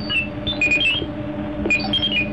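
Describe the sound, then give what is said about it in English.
A robot's electronic alarm beeps insistently as its sensors detect a sudden fluctuation warning of a tremor, high warbling chirps rising and falling in quick bursts over a steady low mechanical hum, loud with no one talking. “Alarm! Alarm!”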